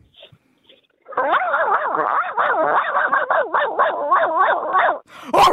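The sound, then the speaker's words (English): A person imitates a chihuahua, producing a rapid string of high, pitched yips and warbling barks for about four seconds, loud. “That is a chihuahua.”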